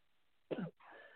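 During a prayer, a single sharp cough bursts out loudly, followed by a softer, raspy breath that trails on for a moment. No one speaks.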